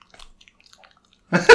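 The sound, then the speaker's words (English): Faint, scattered crunching clicks of someone chewing food into the mic while recording, ending in a sudden loud, crackly burst of chewing noise. “Your talking will be so loud, you won't be able to hear my chewing.”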